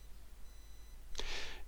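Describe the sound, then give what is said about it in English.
A single short, shrill electronic alarm-clock burst cuts in toward the end after quiet, harsh and bright, lasting about half a second, with no talking. “If, like most people, you wake up to the sound of a screeching alarm clock, you've been shocked out of your sleep, you're not ready for the day ahead”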